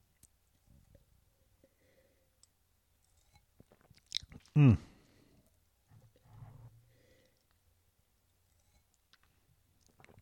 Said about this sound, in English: So, I'm going to have a sip of that reading wine that I've been working on.